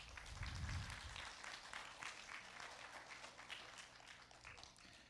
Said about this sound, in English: You can clap.